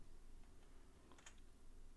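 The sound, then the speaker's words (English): A few soft, scattered keystrokes on a computer keyboard, faint and irregular, with a small cluster of clicks near the middle over a low background hum. No one speaks. “I know it's a lot of typing.”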